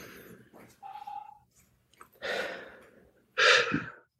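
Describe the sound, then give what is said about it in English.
Breathy, airy bursts of a person inhaling deeply, holding, then exhaling, with a louder, rushing exhale near the end and a brief tonal hum in between. “And so take in a deep breath right now and hold it. And let it out. Do it again.”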